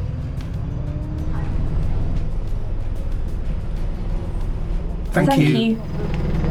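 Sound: bus driving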